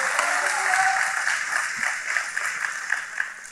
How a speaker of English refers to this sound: Come on, y'all, give the Lord a hand. Even just clap for Jesus for your neighbor right now.